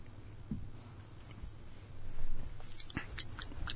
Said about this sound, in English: Are you ready to taste it? Oh, yeah. I was going to. Yeah? All right. Let's take a sip.